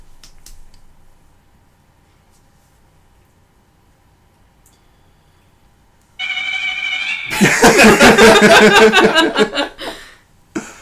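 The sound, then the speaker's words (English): After several seconds of near silence, a steady electronic alert tone starts, then a loud clash of overlapping chimes and buzzing alarms erupts as several phones and smartwatches go off together. “Oh my god, fucking phones and watches are going off like crazy.”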